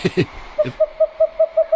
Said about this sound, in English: Twit twoo. It's an owl on a trampoline. A very small trampoline.